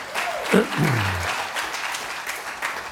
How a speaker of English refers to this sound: Give the Lord a clap offering right there.